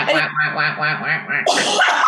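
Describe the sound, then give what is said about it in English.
A person does a nasal, buzzy duck-quack impression, a rapid run of honking pulses, ending in a breathy, laugh-like burst. “I'd wheel in on my chair, go duck impression to make it all go.”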